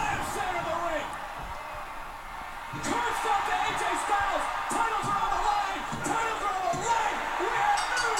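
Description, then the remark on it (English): A large wrestling crowd, on its feet, roars steadily as a running power slam comes after a hot tag, swelling louder partway through, with scattered whoops, shouts and sharp thuds from the ring cutting through the dense cheering. “Everyone's losing their minds. Crowd loving it. Everyone's on their feet.”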